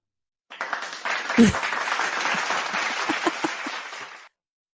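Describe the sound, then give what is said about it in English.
A children cheering sound effect: a burst of children cheering and clapping lasting several seconds, with an excited high-pitched shriek early on over a steady wash of crowd noise that cuts off abruptly. “It's children cheering.”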